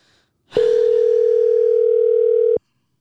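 A phone call to a person, routed through a Rodecaster Pro mixing board, rings out with one steady, loud electronic ring tone lasting about two seconds, clean, with silence before and after and no talking.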